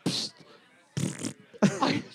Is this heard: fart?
yes